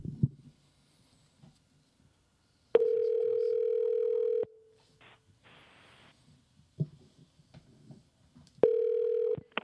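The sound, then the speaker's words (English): A telephone call to the Fish Hawk shop is dialed and rings over the phone line: clicks and a brief hiss, then long, steady, buzzing ring tones repeating after a pause of several seconds, with no talking. “It's dialed up, and here we go,”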